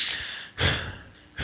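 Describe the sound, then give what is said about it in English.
Ragged gasping for breath from a figure lying on the ground, three harsh, breathy inhalations in quick succession with brief pauses between them and no talking. “The spirit of the forest is lying there, gasping.”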